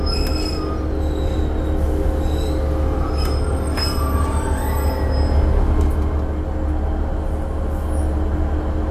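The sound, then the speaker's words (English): A train arriving at Barry Island, Wales, rumbles steadily along the rails, a constant low roar with high metallic squeals from the wheels breaking through at intervals. No one speaks. “If the train stops, so I can set foot onto the soil, of course.”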